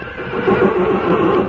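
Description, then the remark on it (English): A mare in a stall with her colt, about 3 months old, whinnies loudly while turning around, a sustained wavering neigh lasting over a second with a rough, quavering pitch and no voices. “Wonder what's got into that mare.”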